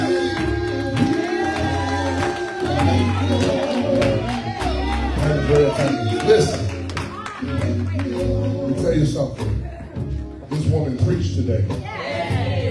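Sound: audience clapping and cheering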